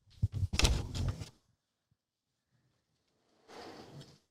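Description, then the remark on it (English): A door is pushed shut with a scraping swing and a solid thump, followed by a short pause and then a softer rustling shuffle. No one speaks. “No, hold on, I'm just gonna shut that door.”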